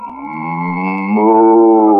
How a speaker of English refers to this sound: Well, Mr. Wise Guy, none of the cattle come back. How do you know any of them heard you? Hey, I think there's one out there now. Listen.